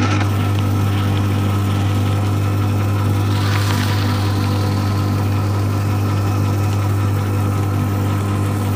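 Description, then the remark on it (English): A paper shredder runs steadily with a loud, low motor hum and a constant mechanical drone, with a brief rougher, hissing grind partway through and no voices. “It is a paper shredder.”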